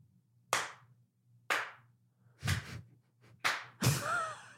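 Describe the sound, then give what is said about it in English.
Five slow, deliberate hand claps imitating the judge clap from the show Stuck land about a second apart, each sharp and loud against a low steady hum. A brief rising vocal sound trails the final clap. “But that was the judge clap from Stuck.”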